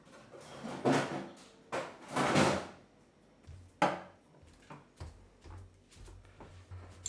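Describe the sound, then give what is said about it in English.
A fridge door is pulled open to grab a Belgian beer (Le Chouffe Houblon) and later shut, with a few loud clunks and rattles in between and a soft low hum in the last couple of seconds. No one speaks. “I'm going to go to the fridge and grab a beer.”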